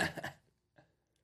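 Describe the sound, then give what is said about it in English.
A quick slurping sip from a can of fizzy drink: one short breathy burst, then a faint second gulp-like sound after a brief pause. No one speaks. “Take a full, big sip. Big sip. I really need you to taste it. It's my carbonated piss.”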